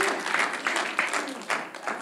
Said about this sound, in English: I'm going to wait till y'all clap because that is truth and it is God's word and it is his scripture.